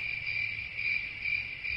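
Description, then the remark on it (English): A sound effect of a steady, high-pitched chorus of crickets chirping continuously, fairly loud, with a faint low rumble underneath and no voices. “Anyway, crickets is really what we're getting.”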